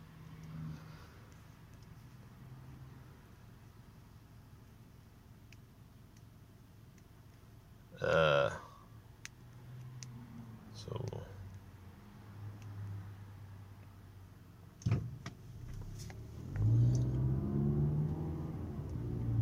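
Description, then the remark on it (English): A pickup truck's engine rumbles steadily as it drives, with a few sharp clunks and knocks along the way, then revs up loudly near the end. No one speaks. “Now we're driving again. Pick up truck.”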